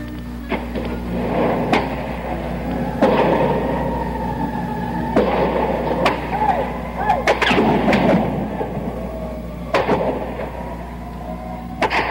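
Gunshots crack out one after another at irregular intervals, sharp loud reports with brief gaps, some in quick pairs, over a steady low rumbling hum and a faint wavering tone; shots fired during a gun battle at a tower and on a mall.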